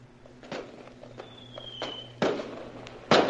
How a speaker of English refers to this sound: Yeah, there's fireworks.